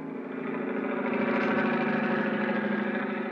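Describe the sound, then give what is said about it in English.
A helicopter engine drones steadily and loudly, a continuous throbbing hum that swells slightly after the opening moment and holds for the whole stretch, with no voices; the helicopter is flying out to sea from an airfield at Cape Town, South Africa. “I don't know which was throbbing the most, the helicopter engine or my head.”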